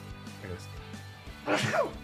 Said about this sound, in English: Oh, I had a sneeze.